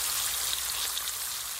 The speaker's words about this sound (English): Yeah, I heard listen you to it sizzling. Listen to that bacon sizzle.